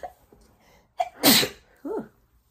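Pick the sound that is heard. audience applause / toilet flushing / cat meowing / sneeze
sneeze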